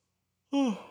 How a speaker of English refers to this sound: And you know what it is, dude? I mean, part of my sitting here yawning